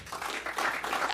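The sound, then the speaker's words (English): An audience applauds when asked who is into the NFL playoffs, a steady wash of many hands clapping at moderate volume that keeps going for the full second or so, with no voices rising above it. “Round of applause if you're into the NFL playoffs.”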